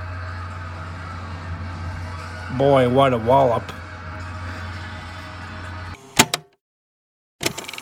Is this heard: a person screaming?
no